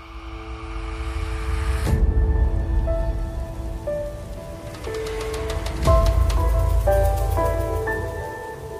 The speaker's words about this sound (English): The storm raged fiercely all that night, but nothing of particular note occurred.